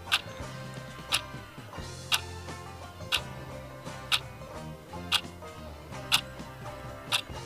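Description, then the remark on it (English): A countdown clock with 10 seconds on it ticks steadily, one crisp tick about every second, eight in all, over a sustained low tonal bed with no talking. “You have 10 seconds on the clock.”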